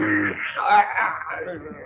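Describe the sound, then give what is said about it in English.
A person imitates a giant rabbit's roar with a low, drawn-out, moaning vocal growl that wavers in pitch and stays steady and fairly loud for about two seconds. “the bunny roar, which I assume everyone can hear”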